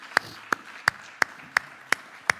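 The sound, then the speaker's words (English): An audience clapping hands in praise of the Lord: seven sharp, even claps in a steady, brisk rhythm, each crisp and distinct, with no voices over them. “Could we give the Lord another hand clap of praise?”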